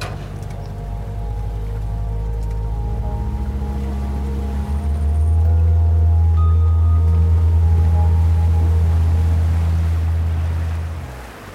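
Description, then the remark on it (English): A motorboat idles on the ocean off Puerto Escondido at first light while those aboard scan the horizon for a blue whale blow: a steady low rumble and harmonic drone, rising slightly in strength midway, alongside faint water wash and splashing. No voices. “We've just sailed out to the exact spot which I marked on my GPS yesterday where we first saw 2 blue whales, and the boat's now idling as we all scan the horizon for a blue whale blow, but also listening out for it.”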